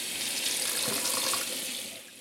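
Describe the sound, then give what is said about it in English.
A steady hiss of tap water runs into a sink, with faint clinks and splashes of dishes being washed, fading slightly at the end. “Are you the kind of person who actually likes washing dishes?”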